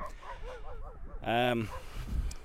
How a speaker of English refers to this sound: There's a couple of, well, four dogs having a nice little frolic, all enjoying each other's company.